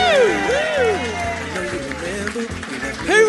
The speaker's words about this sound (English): Please give a huge round of applause for the two hosts of Little Dum Dum Club